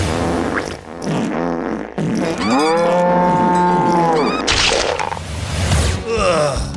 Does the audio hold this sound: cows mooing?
yes